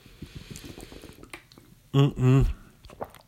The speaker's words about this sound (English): Let me get a sip of. I haven't had a single sip of water. I haven't been playing by the rules here. The rules of podcasting, where you have to stay hydrated. So let me grab a sip from my Red Robin's water bottle.